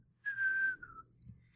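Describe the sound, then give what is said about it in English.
A short whistled melody at the beginning of a song: one long, steady high note slides into a briefer lower note, clear, with no talking and only a faint low hum underneath. “I just heard the whistle at the beginning of the song.”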